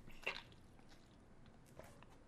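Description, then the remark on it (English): Someone drinks water, with a wet gulp and swallow near the start and a softer mouth sound later, all quiet with no talking. “I need that water.”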